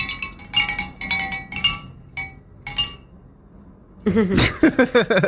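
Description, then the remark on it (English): Cowbells are struck several times at irregular intervals, each hit a bright, metallic clank that rings briefly. A louder, busier burst of clanging and ringing follows at the end. “I have cowbells in every pitch.”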